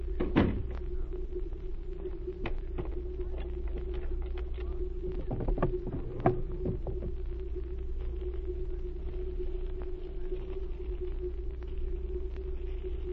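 A door on a ship shuts with a solid knock amid a few smaller clunks and rattles, all over a steady low engine hum and rumble that runs throughout.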